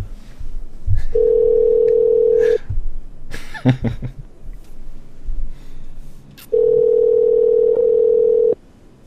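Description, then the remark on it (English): A steady telephone tone hums twice as a call is placed to an old man, each tone lasting about two seconds, with a short stretch of clattering clicks and rustling from the phone in between. No one speaks. “No, we're going to call the old man, and we're going to let you know. Well, you'll hear it, and then you just talk to him.”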